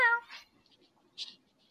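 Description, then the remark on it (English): A person imitates the short, shrill yowl of a kicked cat right at the start, then only faint breathy rustles and a brief hissy burst follow in near silence. “Did I just kick a cat? Why is there a cat in here?”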